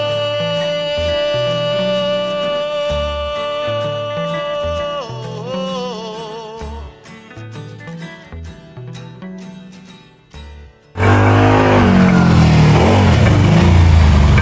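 A motorcycle engine hums steadily, its pitch wavering, then suddenly roars up loud as it revs past, the rough blast filling the final few seconds.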